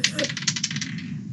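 A die, rolled for a Flames of War game, clatters across a tabletop in a quick run of small hard clicks, fairly crisp, slowing and dying out within about a second over a low background murmur.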